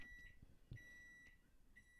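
A microwave oven beeps several times in a row, faint, with short high electronic tones and one slightly longer tone amid low background rumble.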